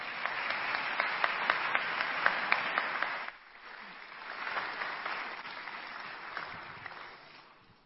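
An audience applauds to welcome a speaker invited out onto the stage in the afternoon, with dense, steady clapping for about three seconds, then the sound suddenly drops to softer, thinner applause that carries on until the end.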